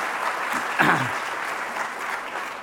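Steady audience applause, a dense wash of many hands clapping at an even level for a few seconds, with a brief voice-like sound surfacing partway through.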